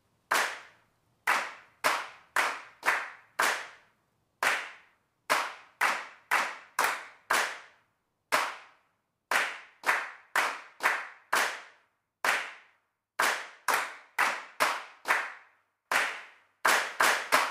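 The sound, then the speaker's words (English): Sharp, loud hand claps ring out in a rhythmic pattern, grouped in quick bursts of three to five with brief pauses between, each clap bright and crisp with a short decay. No one speaks. “If you would like to, join in these claps with them.”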